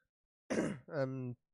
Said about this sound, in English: sorry about clearing my throat, by the way. I do that a lot.